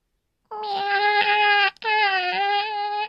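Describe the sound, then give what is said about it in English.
A person's voice imitates a cat's meow, an 'I need help wiping' meow, in two long, drawn-out wailing calls separated by a brief break, loud with a steady harmonic tone. “Okay, this is the most important meow for me. And it's the I need help wiping meow.”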